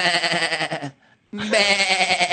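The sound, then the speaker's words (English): A person loudly imitates a sheep with two long, quavering bleats, a short silent pause between them, the second bleat rising in pitch and stretching to the end. “A bunch of spineless sheep who aren't in control of anything.”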